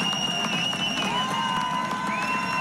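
A large concert crowd in Michigan cheers and shouts continuously in support of a musician who passed out during the concert, a dense wash of voices with high whoops and sustained tonal cries rising above the roar, loud and steady throughout.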